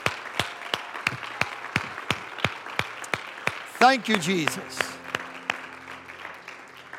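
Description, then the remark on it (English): A group claps hands together in praise to the Lord in a steady, even rhythm, sharp and continuing throughout, while a voice briefly speaks over the beat midway. “Clap your hands to the Lord and let's praise him together.”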